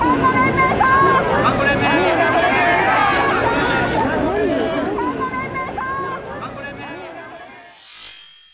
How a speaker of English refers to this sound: He abruptly stops talking, and there's sounds of gunshot and commotion. The next thing we see is a man being wrestled to the ground. And we also hear lots of shouting.